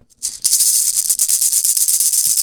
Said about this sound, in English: I'm going to bring out a tambourine and some maracas. Actually, I have one here.